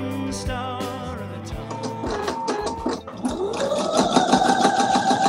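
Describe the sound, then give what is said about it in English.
A sewing machine runs as someone hunched over it sews together a colorful 12-block quilt, its needle clattering in a rapid, steady rhythm while the motor whine climbs in pitch and grows louder as it speeds up. “Vanessa Genier is hard at work, hunched over a sewing machine, putting together a colorful quilt.”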